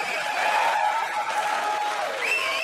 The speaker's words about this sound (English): There's a reason people are cheering.